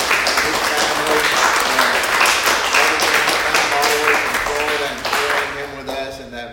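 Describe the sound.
An audience claps hands in a dense, sustained burst of applause, with cheering voices rising over it before the clapping begins to thin out near the end.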